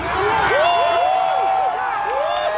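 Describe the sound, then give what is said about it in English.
A large crowd cheers and whoops loudly outdoors, just south of downtown Minneapolis at the site where Derek Chauvin knelt on George Floyd's neck, celebrating his guilty verdict. Many voices rise and fall in overlapping shouts, a continuous dense roar of celebration throughout the short stretch. “And cheers erupted, too, just south of downtown, at the site where Derek Chauvin kneeled on Floyd's neck for 9.5 minutes.”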